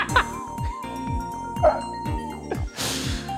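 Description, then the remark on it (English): Dogs bark again and again in a quick, uneven series of sharp yaps, fairly loud, with a steady tone humming underneath. “Wonder why they're barking.”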